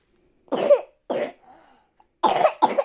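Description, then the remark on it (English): A young child coughs four times in two pairs, short raspy bursts with a brief pause between the pairs, loud and clear with no talking over them. “Do you want to tell us about your cough?”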